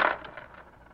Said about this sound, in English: You dropped some coins